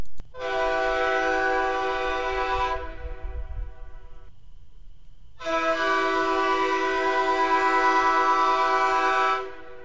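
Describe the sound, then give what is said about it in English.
Two long, loud blasts of a train horn, each a sustained harmonic chord lasting a few seconds, separated by a short pause with low rumbling underneath. No one speaks. “That's right, Honk Honk.”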